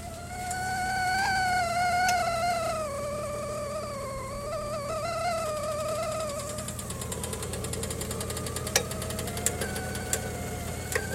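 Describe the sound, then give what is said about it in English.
An old-fashioned iron tea kettle whistles with a steady, buzzy tone that wavers slightly in pitch, loud at first and then thinning out, joined later by a few sharp clicks. No one speaks. “Oh, my tea kettle is going off.”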